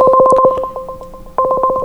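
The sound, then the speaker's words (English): An outgoing call's ringing tone plays alone on a Nexus tablet, a fairly loud electronic two-note burble pulsing rapidly, fading briefly in the middle before the trilling ring resumes. “You call it through your tablet?”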